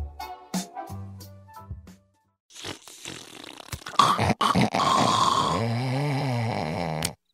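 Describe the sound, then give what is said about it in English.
Five seconds of Homer Simpson snoring, cartoonish: a voice imitates heavy snoring with low rattling inhales, sputtering lip-flapping exhales and a whistling, wavering tone, loud and comedic, with short pauses between breaths. “And that was 5 seconds of Homer Simpson snoring.”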